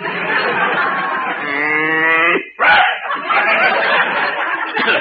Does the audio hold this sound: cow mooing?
yes